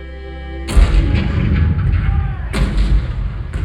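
cannon fire

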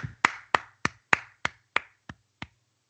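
applause

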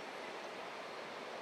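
flowing river water

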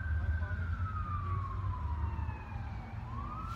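emergency vehicle siren passing

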